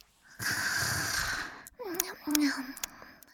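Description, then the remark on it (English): A voice imitates snoring as Sparky sleeps: a long, rasping, breathy inhale followed by a couple of short voiced snorts, fairly loud, with no other sounds around it. “Sparky was snoring.”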